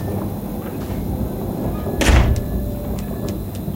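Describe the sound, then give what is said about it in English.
A kitchen door slams shut once with a single loud bang and a heavy low thud, set against a steady background hiss, followed by a few faint ticks. “I thought I told you to be mindful of the kitchen door.”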